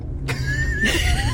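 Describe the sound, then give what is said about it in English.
A car horn honks in two short blasts, the second one held longer, over the steady low rumble of a moving vehicle's interior. “Le pito. Sí, pítale.”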